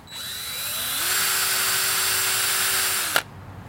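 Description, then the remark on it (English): A power drill whines up to speed and grinds steadily into a hard red oak log, drilling holes, for a couple of seconds before stopping abruptly with a clunk, loud, with no voices. “This log is really hard. Yeah. I swear I know how to use a drill.”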